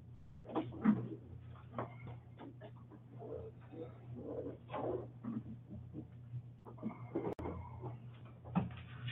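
A door being fixed, with scattered clunks, creaks and knocks as it is moved open and shut, over a steady low background hum and a sharp bang near the end.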